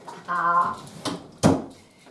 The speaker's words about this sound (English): Bruni, I'm just going to let him go through the door because he wants to go inside now. Off you go, sweetheart. Off we go.